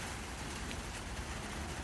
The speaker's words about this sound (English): If you hear a little something like rain on a tin roof, that would be the gazebo I'm sitting in.